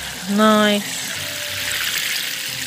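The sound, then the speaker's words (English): Water pours steadily from a watering can over a seed tray of freshly sown French bean seeds in a continuous soft hiss, with a short voiced sound near the start. “So the trick is to get the water running a little bit first and then pour it over.”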